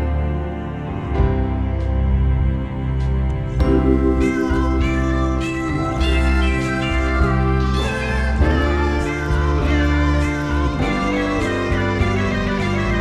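Cat meows, repeated and fairly loud, ride over a dense, steady musical backing that runs the whole time; no one speaks.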